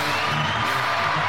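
A crowd cheers steadily for a moment, a loud dense wash of voices with a few higher whoops rising out of it, no speech over it.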